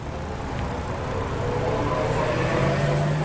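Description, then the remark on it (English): A steady wash of car traffic noise at a busy city intersection where cyclists and pedestrians converge, with low engine rumble, one vehicle's drone growing a little louder toward the end. No voices are heard. “It's a tricky spot where cyclists and pedestrians converge near a busy intersection with a lot of car traffic.”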